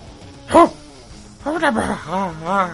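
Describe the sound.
A human voice imitates the squawking of small creatures heard when nearing the entrance of a tunnel: a sharp high squawk, then a run of warbling, rising-and-falling squeaks and chirps, fairly loud and alone with no other sounds.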